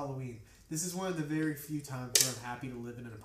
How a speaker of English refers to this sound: That was a terrible can click there. I'm sorry for the audio listener.